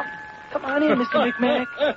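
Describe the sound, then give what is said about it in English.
A doorbell rings with a steady two-tone chime as a visitor arrives at the door; the chime lingers faintly while voices start talking over it for the rest of the moment. “Oh, I hear him at the door right now.”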